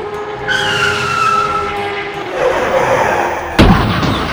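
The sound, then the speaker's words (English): A car pulling over skids to a stop with a loud, sustained tire screech lasting a couple of seconds, fading into rough road noise, then a sharp thump near the end. No one speaks. “Guys, she's pulling over.”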